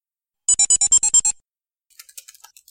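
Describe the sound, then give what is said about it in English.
A quick run of eight sharp, bright chirping bursts, then a pause and a faint, irregular patter of light computer keyboard clicks as someone types. No one speaks. “Are you typing? Or is that a cat? Sorry. No, that's me.”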